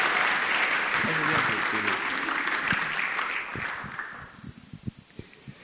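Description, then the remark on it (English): Steady applause from a church audience for a man who preaches and leads worship, a dense wash of many hands clapping with a few voices mixed in, then thinning into scattered individual claps before dying away. “So humble, and so let's give him another clap and open our hearts.”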